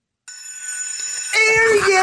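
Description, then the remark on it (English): A hand bell is rung before a wedding announcement, ringing continuously with a bright, metallic, high-pitched tone that starts abruptly, then grows louder and harsher about halfway through and keeps ringing to the end. “That sounded like a school bell. It's a bell for the thing.”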